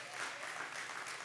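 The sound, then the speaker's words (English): A brief burst of audience applause, steady and dense, many hands clapping at once, lasting just over a second at moderate volume. “You can clap on that.”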